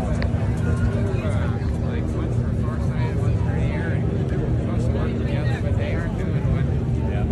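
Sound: airplane flying low overhead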